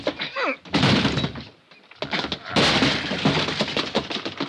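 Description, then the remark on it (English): Heavy thuds and cracking wood as police batter and force open a door, loud, with a brief lull between two bursts of splintering impact noise. “Come on, let's hit the door.”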